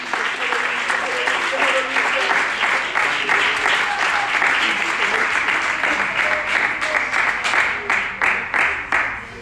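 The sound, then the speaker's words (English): A crowd claps their hands in sustained, dense applause, steady and loud for several seconds before starting to thin out and fade toward the end. “Would you clap your hands and let God...”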